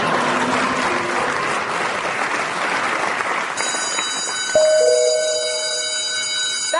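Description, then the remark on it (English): A loud electric bell rings continuously over crowd applause, its steady high-pitched clang joined partway through by a sharper alarm-like tone. “bell is a signal for me, not for you.”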